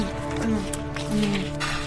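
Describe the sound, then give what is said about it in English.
A few footsteps land at an unhurried, steady pace, each a soft thud with a crisp edge, set over a constant low hum. “Those are real 18th century footsteps.”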